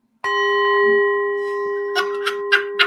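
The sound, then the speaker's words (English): A school bell rings loudly, starting abruptly in a sustained metallic tone, then breaking into several harsh, rattling clangs near the end. No one speaks. “Actually, no, I got one. I got a better bell, baby.”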